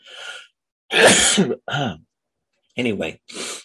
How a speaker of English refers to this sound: little sniffles.